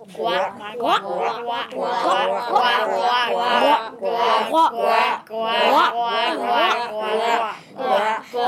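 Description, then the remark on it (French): A group of school pupils imitates frogs as sound effects for tales they are telling. They make continuous overlapping croaking and gurgling noises in rapid pulses, loud, with brief gaps between bursts. “Nous avons fait des croissements de grenouilles.”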